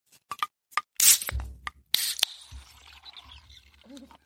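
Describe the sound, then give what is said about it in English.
A few sharp metallic clicks and a bright hiss, then Guinness from a can glugs and splashes steadily into a glass, a low gurgling rumble under a fizzy wash that fades toward the end. “Oh, we're going to pour it into a glass.”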